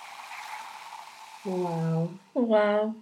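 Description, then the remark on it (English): A close, steady fizzing pour of liquid into a glass held right up to the microphone, lasting about a second and a half, followed by two short voiced vocal sounds. “That's me pouring … glass. She's holding it right up to the mic.”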